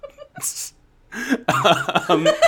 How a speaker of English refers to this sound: See, I'm still a little bit sick, so if I laugh too much, I start to cough.